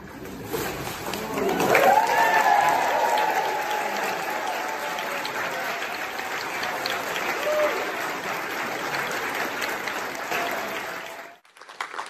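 An audience at Riverside Church applauds a speaker steadily for about eleven seconds, dense clapping with a few cheers and whoops rising early on, then the applause cuts off abruptly.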